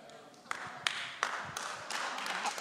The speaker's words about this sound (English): Two claps, three claps. Thank you. Guys, we're at church. It's okay to put your hands together.